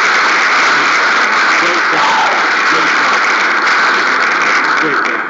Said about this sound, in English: I'll give Fab a round of applause. He played really well tonight, but it wasn't enough for the Cavs to win.